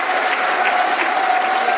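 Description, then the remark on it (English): A round of applause from football fans at the bend of the stadium for a red card shown to Ferguson: steady, dense clapping from many hands, loud and continuous throughout, with a faint sustained tone running underneath and no clear voices. “And as ever, the customary round of applause for a red card at the bend.”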